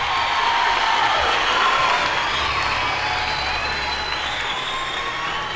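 A large crowd cheers and claps in a loud, continuous roar that holds steady for the whole stretch, with no single voice standing out from the dense wash of noise.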